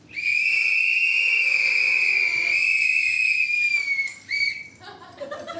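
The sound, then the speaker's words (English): A loud, piercing whistle holds one steady high note for about four seconds, then a shorter whistle blast follows, with faint crowd noise underneath; an audience whistling in answer to a question put to them. “So please whistle if you have ever used a sex toy.”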